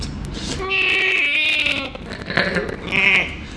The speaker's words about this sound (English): Yeah. that's a camel. That's a Peter camel.